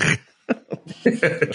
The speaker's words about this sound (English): I just was distracted by the coughing. I'm sorry.